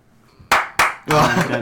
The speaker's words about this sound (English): Congratulations. Three claps.